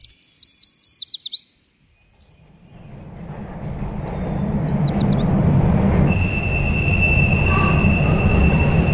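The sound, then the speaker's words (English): A subway train rumbles into Harvard Square and grows louder, then its wheels let out a steady, piercing high squeal against the rails. Quick bursts of bird chirping come first and fade into the din. “It's just a short subway ride from our studios to a university you might have heard of.”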